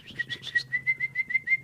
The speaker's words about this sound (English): You whistling for canaries? No, I just whistling.